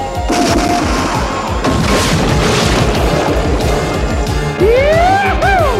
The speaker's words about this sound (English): Dusty's already, he's in the gator boat, and he fires the depth charge kind of up over his head and in front of him, makes this big splash in the water. It comes up and pretty much engulfs Manta as she's flying overhead